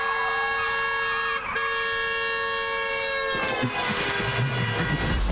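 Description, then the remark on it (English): A loud, sustained car horn blares for about three seconds, then cuts into a rushing whoosh as the driver swerves past an oncoming car in their lane, narrowly missing a head-on crash. No one speaks. “Is that a car in my lane? Oh, snap!”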